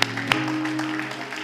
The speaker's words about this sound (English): Come on, clap your hands. Come on, somebody clap your hands. You haven't done this in a while. You haven't done it in a while. Come on, clap your hands, everybody.